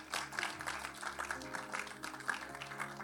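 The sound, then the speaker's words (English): An audience at a church service claps in a dense, steady patter of many overlapping hand claps, fairly soft overall, lasting about three seconds with no one speaking over it. “Are you clapping or you are trying to clap?”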